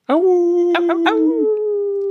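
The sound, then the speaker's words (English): A single long wolf howl holds a steady, slightly rising pitch for about two seconds, loud, with a few short yelping breaks near the middle. “So wolfy.”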